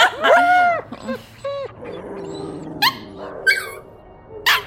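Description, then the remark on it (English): A dog, Meatball, lets out a quick string of loud barks mixed with whiny, yelping tones, then a few more sharp barks spaced out after a short pause. No one talks. “I got breaking news from talking to the dogs.”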